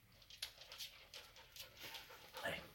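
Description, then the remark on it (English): A female dog pants in quick, breathy bursts, with a soft whimper mixed in, over a quiet background. “there's my dog Ash. She wants to be a part of it, I guess”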